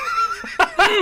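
A drawn-out, strongly voiced sneeze: a wavering, high-pitched intake builds up, then breaks into two sharp, noisy bursts that trail off with a rough vocal tone.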